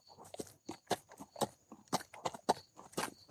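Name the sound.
horse hooves clip-clopping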